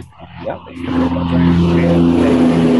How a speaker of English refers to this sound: I feel like I'm about to get hit by a truck. Yeah, you got to say that again because that truck overpowered you.